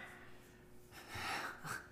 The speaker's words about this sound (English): You're yawning. Are you tired? She's tired.